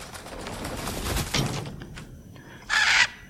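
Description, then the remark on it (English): A raven, Odin's Raven in a video game, caws, with a rough, raspy call early on followed by a single loud, harsh caw near the end, with no voices. “Odin's Raven.”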